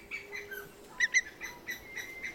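An ornate hawk-eagle calls with a quick series of clear, high whistled notes, two sharper ones in the middle, soft with no other voices around.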